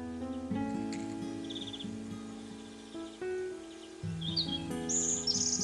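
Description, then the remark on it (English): A small songbird, an African blue tit, sings bright, high-pitched trills in short bursts, clearest toward the end, over a steady low droning hum with no talking. “It is the African blue tit. It's a loud song, isn't it?”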